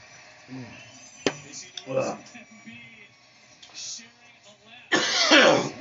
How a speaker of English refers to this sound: So, oh, I'm sorry, my throat is dry and I'm coughing.